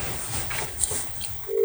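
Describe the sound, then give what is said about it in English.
Quiet phone line noise with a brief electronic beep, then a steady telephone tone starting near the end, like a call being placed after dialing. “I'm going to give him a ring, and let's see if he answers, the silly bastard.”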